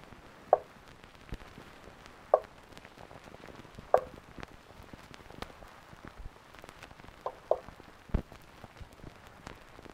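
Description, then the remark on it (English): Several sharp knocks sound at uneven intervals, about five in all with a quick pair near the end, over a faint, steady hiss with no one speaking. “That's me knocking, Josephine.”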